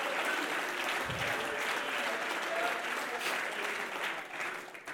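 A crowd claps steadily for several seconds in praise of the Lord, a dense wash of overlapping handclaps at a loud, even level that tapers slightly near the end, with faint voices beneath.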